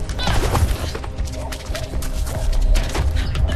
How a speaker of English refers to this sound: Horses. Sounds being like punched on the ground, running fast.